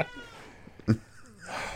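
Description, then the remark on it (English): A male cat lets out a short meow with a brief sharper sound partway through, then a soft rustling noise at the end. No one speaks. “He's just staring at you. PC cat.”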